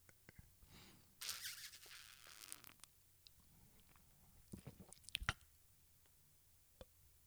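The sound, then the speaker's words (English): A quiet sip of Melvin Brewing Asterisk Imperial Double IPA beer, 9%: a short airy slurp, then soft swallowing, lip smacks and small wet clicks, with no one talking. “Let me take a real quick sip of the Melvin Brewing Asterisk Imperial Double IPA 9%.”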